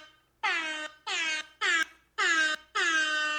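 Five loud air horn blasts from a soundboard in quick succession, each a short, brassy honk with a slight downward bend in pitch, separated by brief gaps, with no talking.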